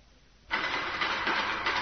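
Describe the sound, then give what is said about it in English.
After a brief hush, a dense shower of stones thrown by attacking ape men suddenly starts pelting down, a steady, harsh rattling clatter that keeps up loudly without pause. No one speaks. “Sounds like a shower of stones.”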